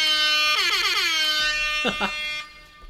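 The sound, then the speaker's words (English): A loud, brassy air-horn blare, seemingly voiced by a person imitating it, holds a steady tone, swoops and wavers, then breaks into a couple of short choppy bursts before trailing off. “Just wanted to bring this nice little rendition of air horns to the table today.”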